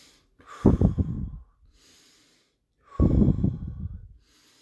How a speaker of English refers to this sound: And if you see these little videos that we post, it's got that little pulsating BP. If you turn your volume up, that's me breathing.